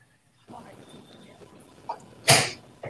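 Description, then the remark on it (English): A single loud sneeze bursts out sharply near the end, preceded by a smaller sniff-like sound and faint background murmur. “Bless you, sir.”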